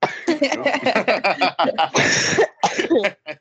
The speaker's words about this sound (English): sorry, I need to cough. COVID.